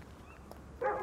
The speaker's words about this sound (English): Oh, shit. That scared the crap out of me. There's a dog barking, if you can hear that. It's far off, probably a farm dog or a guard dog. Well, hopefully, we don't need to run if he comes this way.